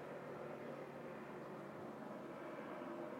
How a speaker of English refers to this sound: Or I love that there is like a plane flying overhead, and I'm not going to edit this.